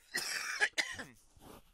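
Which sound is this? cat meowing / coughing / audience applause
coughing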